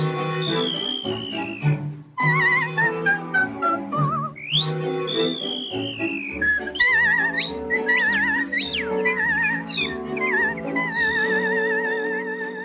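A bright, high whistled melody from the film Snow White rises and falls in quick notes and sliding swoops, carried over a steady, full instrumental accompaniment for the whole stretch.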